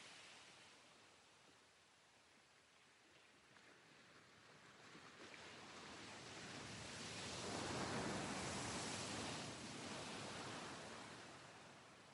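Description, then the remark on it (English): Steady ocean surf washes in, swelling to a broad, hissing wave around the middle before slowly receding, with no voices, just the continuous rush of water on the shore. “Let whatever distraction may arise come, gently bringing your presence back to the rhythm of breathing with the ocean.”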